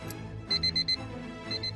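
A clock alarm beeps in quick bursts: four sharp, high electronic beeps in a row, a brief pause, then the beeping starts again, fairly loud with no talking.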